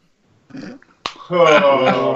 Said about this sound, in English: Oh, excuse me. Oh, burp counter. So it begins. I'm sorry. Alcohol makes me burp.